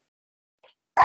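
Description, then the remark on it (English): A single sharp, explosive sneeze bursts out loudly after near silence, preceded by a faint quick intake of breath. “excuse me. Bless you.”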